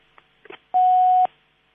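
A few faint line clicks, then a single steady electronic telephone tone sounds for about half a second, loud and clear, like an outgoing call's ringing signal before the line goes quiet; a birthday call placed from Radio Veritas.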